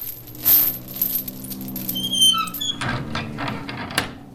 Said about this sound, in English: I'll just bang on this metal door here. Hello? Hello? Is anyone home?